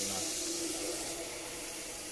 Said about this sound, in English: Oh, you're filling up the dog bowl, ain't you, sweetheart?